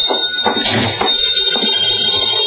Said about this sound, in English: As I walked in the door, the phone was ringing.